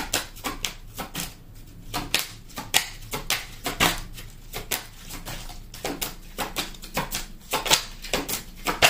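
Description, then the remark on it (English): A deck of tarot cards being shuffled, a steady run of quick, crisp slaps and riffles with brief pauses between bursts, no voices. “This card came out during the pre-shuffle.”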